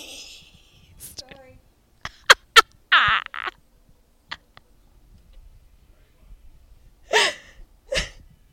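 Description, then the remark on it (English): A woman, the speaker's mother, sneezes in the background, a sharp burst of breath set back from the microphone, amid a few brief clicks and faint, muffled voice sounds. “My mom just sneezed in the background.”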